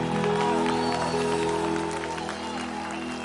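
An audience claps their hands together in a dense, continuous patter, steady and fairly loud throughout, with sustained musical tones humming underneath.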